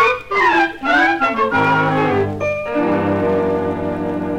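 A horse whinnies loudly, a shaky, wavering cry that falls in pitch, then trails into a long, steady, drawn-out tone lasting several seconds.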